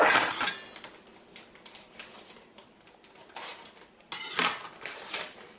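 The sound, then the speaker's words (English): Metal kitchen utensils clatter and clink against each other in a busy rummage while a vegetable dip is being made, with a bright burst at the start and another near the end as a knife is picked out. No one speaks. “Gotta have a knife. There it is.”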